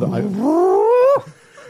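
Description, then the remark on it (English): A single drawn-out, cat-like yowl rises steadily in pitch for about a second, then breaks off abruptly, loud, followed by faint background noise. “Look at that sound. It's like a cat.”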